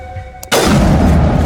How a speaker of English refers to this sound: The sniper rifle does so much damage per shot versus these husk thingies that it knocks them over. And then as they try to get back up, you can shoot them again, which is hilarious.